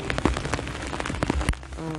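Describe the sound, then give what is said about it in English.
Steady, dense, heavy rainfall patters, a continuous hiss broken by sharper drops striking a surface, with a faint voice-like hum near the end. “Jeez, it's raining hard.”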